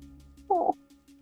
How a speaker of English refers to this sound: My dog is asleep and she just made a little noise.